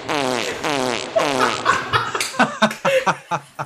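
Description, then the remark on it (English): A voice makes loud, drawn-out fart noises, a few sputtering blasts in a row, then breaks into short, choppy bursts that sound like laughing. “Too quick. Too quick. The farts and everything.”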